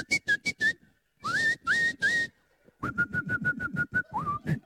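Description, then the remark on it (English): An audience in a church whistling together in short, repeated bursts like birds during a storm, some notes sliding upward and others chirping rapidly like birdsong, fairly loud, with no talking. “Are there any good whistlers out there? Come on, let's do it. Let's make this 4D.”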